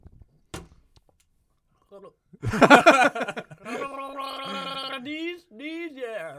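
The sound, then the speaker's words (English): Gurgling, bubbly gargling of water bursts out loudly, then a voice carries a wavering sung tune through the gargle in sustained, rising and falling notes, followed by a short gargled tail. “Oh, I thought you were going to give us a song, Gargling Some Water.”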